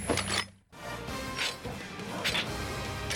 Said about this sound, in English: And I need to talk about the sound design, because these are just plastic, so anytime anyone touches it, you get these clinking and clashing sounds.